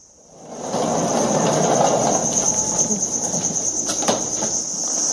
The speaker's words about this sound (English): So this is one of the grow rooms or production rooms, and you can see all the crickets set out in these cardboard partitions. And of course, there's food and water on every row for the crickets.